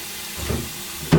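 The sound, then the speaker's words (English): Tap water streams in a steady, hissing rush as a Disneyland coffee mug is rinsed, with a low gurgle in the middle and a louder splash right at the end. No one speaks. “Give this bad boy a rinse.”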